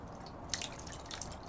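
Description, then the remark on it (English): Several soft drips of dirty water land on the ground, a pair in quick succession and another a moment later, over a faint steady background hiss with no voices. “But yeah, the pages of this album start to become soaked with like dirty water spreading out from the center binding, the spine of the book.”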